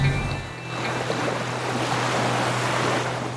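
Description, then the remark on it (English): A motorboat engine revved to signal divers to surface drones with a steady low hum over a constant wash of splashing water and wind, fairly loud, with no one speaking. “Immediately, they try to signal the other divers to surface by revving the engine of the motorboat.”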